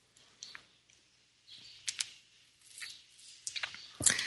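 Someone quietly sips a drink: soft slurping and wet mouth sounds with a few sharp little clicks, ending in a brighter clack like a cup being set down. No talking.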